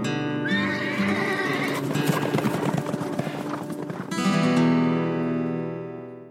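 A horse whinnies loudly, with shrill, wavering neighs at the start and again near the end, while hooves clop in a busy, uneven rhythm between them.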